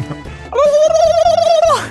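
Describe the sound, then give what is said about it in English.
A person imitates a turkey with a single loud, warbling vocal call lasting about a second, its pitch wavering rapidly, with no other talking. “The time of year where I do my turkey sound.”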